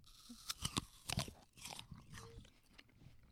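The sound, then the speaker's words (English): Sharp crunches of someone biting into a crisp Cosmic Crisp apple, several bright snaps in the first second and a half, followed by softer, wetter chewing sounds continuing steadily. “I don't want to chew, but I'll give you a bite so you can tell the crispness, right? Let's all bite at the same time and we can chew.”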